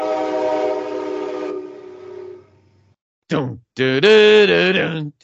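A loud, sustained train horn blares, then fades into a low rumble. After a brief silence, two shorter, wavering horn-like blasts follow.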